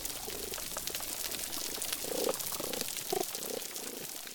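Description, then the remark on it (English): Snapping shrimp on a coral reef crackle in a dense, continuous underwater fizz of tiny clicks, each made by a claw firing a bubble that implodes, steady throughout, with a few short low warbling tones rising briefly above it. “When you put all the snapping shrimp together, you get that crackling sound.”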